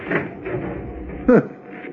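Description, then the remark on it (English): A door off a corridor, leading to an officer's cabin, is opened with a brief, sharp creak and clunk about two-thirds of the way through, set against a low, steady background rumble. “Well, the doors on either side must lead to the officer's cabin.”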